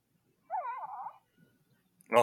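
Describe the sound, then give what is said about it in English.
A Baby Yoda talking toy, the one you push the belly of, gives a soft, warbling little coo lasting about half a second, then after a pause lets out a short, brighter squeaky chirp. The sounds are fairly quiet, with no talking. “Oh, just the little noises.”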